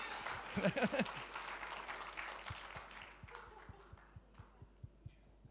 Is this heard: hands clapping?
yes